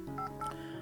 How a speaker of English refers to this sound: He places the pillow on one end, then removes his shoes before pulling his phone from his jacket pocket and dialing a number.